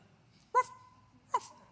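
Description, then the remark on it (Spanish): A small dog lets out two shrill, high-pitched yelps about a second apart, each trailing into a thin whine, over a low background hum. “Oye, ladraba full y chillón.”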